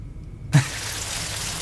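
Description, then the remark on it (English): After a brief quiet moment, a dense, steady hiss of hail falling outside, recorded as a video, suddenly fills the air, continuing evenly as a constant wash of tiny impacts with no voices. “There's hail out here. I'm gonna go ahead and take a video. We'll splice it in right here.”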